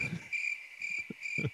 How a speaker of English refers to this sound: Crickets.